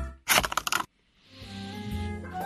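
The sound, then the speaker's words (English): An empty toilet roll, the inside tube, spins briefly on a toilet paper holder, giving a loud, fluttering rattle for about half a second, then a steady tonal hum fills the rest. “He's spinning that on the toilet paper holder, on the holder.”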